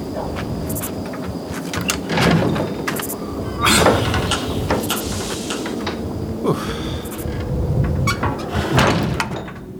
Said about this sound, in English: Okay, the door here is pretty heavy, so hold on a second.